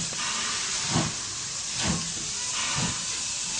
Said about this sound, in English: did you turn down that train?